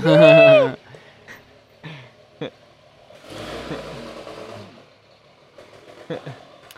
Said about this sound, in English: Yeah, this is the truck that we were talking about. Probably going to hear it.